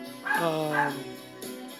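A dog barks and yips, a couple of sharp, pitched bursts in quick succession that trail into a whiny tone before fading out.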